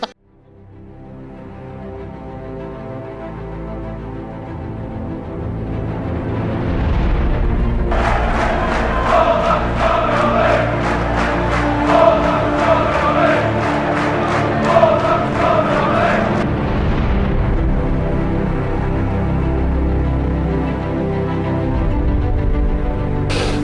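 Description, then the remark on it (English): A football crowd cheers on its team loudly and continuously after a tough result, a dense roar of many voices that swells midway into a stretch of rhythmic, chant-like clapping before settling back into a steady din. “Today, even in the end, we've had a tough result and they're still cheering us on, so that shows the dedication they've got.”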